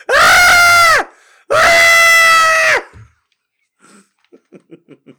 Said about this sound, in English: I haven't screamed that loud since the fucking Halloween spider in the shower.